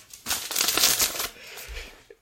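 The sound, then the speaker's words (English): A fairly loud burst of crinkly paper rustling for about a second as a sheet of paper is picked up and handled, then it fades to softer shuffling and a small tap at the end. “Hold on. Let me get the paper.”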